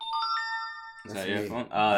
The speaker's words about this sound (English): That's your phone? Oh, that's you. Oh, okay. Gotcha. Those are pop-ups. That's gotcha. The worst part. I can't imagine about that. Yeah, it's like nothing. I'm like, I know that sound, but I haven't heard it in years.